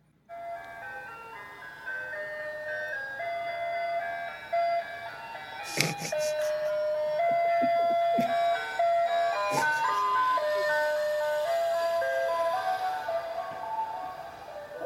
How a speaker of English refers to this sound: I mean, I live kind of by a school, but it always seems to come by on days when school is not in session. There are no children around and it just has this very creepy calliope. So I'm going to play this recording. Haunted ice cream truck.